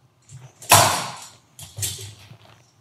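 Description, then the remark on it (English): A person rolls their chair out across a hard floor in two short pushes, each a rumbling scrape with a brief creak, with no voices. “In this segment, man, I decided that I want to roll my chair out.”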